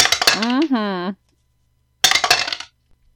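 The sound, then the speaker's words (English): Hard stone dice clatter and rattle across a tabletop in a short burst as they are rolled for a vigor check in a game, a voice briefly exclaims, then a second rolling clatter follows after a pause, fairly loud. “Ooh, that's them stone dice.”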